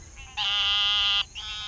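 A loud, sustained buzzing trill of frogs calling at sundown in the Mississippi Delta, one long call of nearly a second flanked by softer calls, with no talking.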